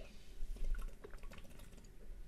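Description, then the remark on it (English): Someone takes a quiet sip of water, with soft slurping and liquid sounds over a couple of seconds and no talking. “Let me just take a little bit of my sippy water.”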